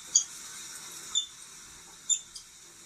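An otter gives a few short, shrill squeaks, three main chirps with a softer fourth, spaced about a second apart over a steady faint hiss, with no talking.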